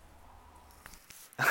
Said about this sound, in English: So the dog just picked up her toy. I promise you they weren't going to bark, but I didn't even think about the squeaking.